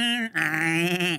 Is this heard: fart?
no